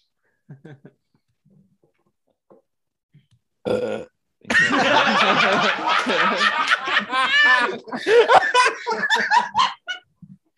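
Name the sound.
burp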